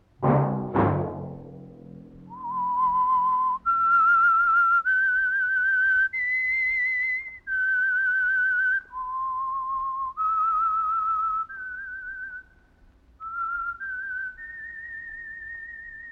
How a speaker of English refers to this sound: Let that whistle be your signal for the Signal Oil program, The Whistler, each Wednesday night at this same time.